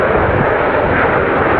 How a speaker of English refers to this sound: The military aerobatics team is dedicating their flyover to the 6 military members killed in